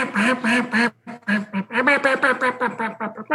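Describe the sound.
A duck call blown loud to imitate two ducks: three drawn-out nasal quacks, a brief pause, then a quicker run of a dozen or so choppy quacks in a steady rhythm.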